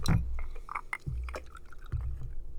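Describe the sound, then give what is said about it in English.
Liquor glugs and splashes into a glass in a few short bursts, with bright clinks and a low rumbling pour, fairly loud, no voices. “We got four pours tonight, buddy.”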